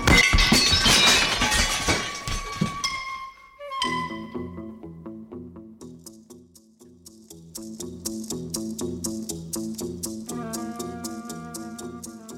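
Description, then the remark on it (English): Dishes shatter as bullets hit them in a loud, dense crash of breaking crockery and ringing clinks lasting a few seconds, then give way to a steady, rhythmic pattern of bright, tinkling tones. “I didn't expect the bullets to have such impact. I'll clean up the broken dishes.”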